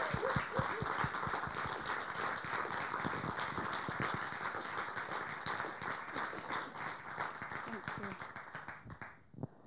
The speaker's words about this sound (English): And while they're coming up, can we give them a really, really big round of applause?